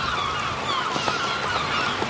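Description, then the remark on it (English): Seagulls, added as a sound effect over an ocean soundscape, cry out in a cluster of overlapping, harsh calls over a steady hiss of background noise, moderately loud and continuous through the short stretch. “And then I thought, hey, why not? I'll put some seagulls.”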